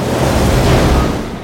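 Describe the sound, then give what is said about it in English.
A loud, sustained rumble of thunder in a film scene as a huge alarm clock turns over from 5:59 to 6 a.m., rolling on without a break, deep and broad, holding steady before easing slightly at the end. No voices are present. “And then we cut to the absolutely huge version of the alarm clock as 5:59 slowly teeters over to the sound of thunder to 6 a.m.”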